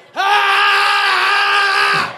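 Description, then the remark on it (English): A man's voice lets out one long, loud, strained scream lasting about two seconds, held at a steady pitch before cutting off abruptly, imitating a man screaming as he came out of the water after a pastor dipped him. It sounds like a performed imitation rather than a real scream. “This nigga came out the water screaming.”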